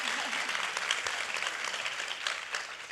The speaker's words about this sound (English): We appreciate it. Help me give them a hand of applause, guys. Thank you. Thank you.